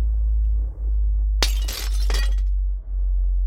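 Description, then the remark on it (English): Light bulbs exploding: a sudden sharp burst of glass shattering, followed by a second crash about a second later with tinkling debris, set against a steady low electrical hum and no voices. “I heard glass explode and it got darker. More glass exploded. I looked out and saw every light bulb was blowing up.”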